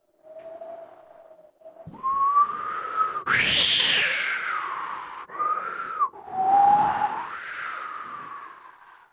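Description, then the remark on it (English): Wind picking up as the sky turns very cloudy gusts with an eerie tonal whistle that rises and falls in pitch, swelling into louder rushing bursts and easing back, lasting several seconds with no voices. “The wind started to pick up.”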